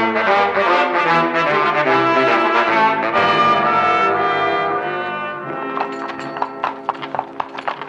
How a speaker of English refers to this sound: What's the use of having horses if all we do is walk? And up a stream, too.